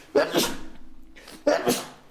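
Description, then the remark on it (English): Two sharp sneezes into an elbow about a second apart, each a sudden loud burst of breath that quickly fades, with no talking in between. “Picture of me sneezing as the picture of me on the episode, aren't you?”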